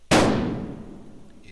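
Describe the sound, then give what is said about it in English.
A single loud rifle shot fired at night at what was taken to be a deer: a sharp, explosive crack that rolls off into a long, fading rumble over about a second and a half, with no voices. “I chambered around, drew down on him, and fired.”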